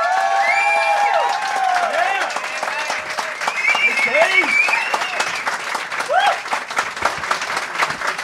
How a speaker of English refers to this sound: But ladies and gentlemen, could you please bang your hands together and welcome to the stage of fabulous guest Charlie number one, Dave Anthony.